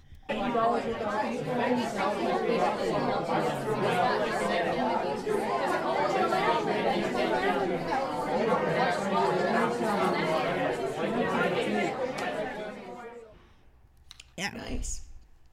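A steady wash of overlapping crowd chatter, many voices talking at once with no single speaker standing out, holding an even loudness for about thirteen seconds before fading, followed by a brief thump.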